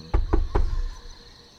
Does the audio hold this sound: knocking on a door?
yes